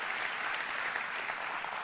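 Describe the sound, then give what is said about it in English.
Steady, dense applause from a sizable audience at a church, many hands clapping at once for the camp's adult leaders in a continuous wash of sound with no talking over it. “I've never worked with a group of adult leaders as awesome as these adult leaders, and I want to give them a huge round of applause.”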